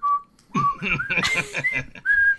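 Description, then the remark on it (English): Clear whistled notes open and close the moment, with a burst of snickering laughter and breathy sounds in between. “Plus the whistling. They've killed whistling for me forever. That was like Nightmare on Elm Street whistling.”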